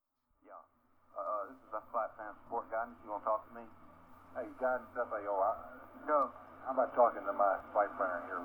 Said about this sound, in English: we hear how Jupiter's overwhelming mass, with its tempestuous vortices of gas clouds and violent storms, create a chaotic whirlwind of radio interference as we calmly approach Io itself.